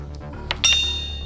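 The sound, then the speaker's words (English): A single bright bell ding, called the death bell, strikes and rings on with a clear, high, sustained tone, preceded by a softer tap or two, over a low steady background hum. “That's the death bell.”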